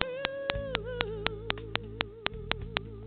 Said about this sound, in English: Hold on a second. I heard a knocking noise.